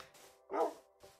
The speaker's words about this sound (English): Wolves!